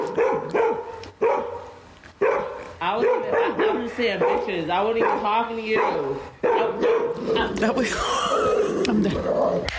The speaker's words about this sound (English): What noise is that dog making? That's what Pacho thinks he sounds like.